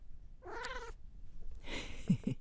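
A domestic cat meows once, a short clear tonal cry, followed after a brief pause by a rougher, breathier vocal sound. Moderately loud, with no talking.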